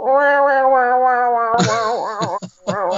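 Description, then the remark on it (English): A voice imitates an old pet cat, Kahlua, hacking up a hairball: a long, steady droning yowl followed by several loud, choppy retching heaves with brief gaps between them, without any talk. “No, we would, our old cat Kahlua, we would know if she was going to have a hairball because we hear from the other room.”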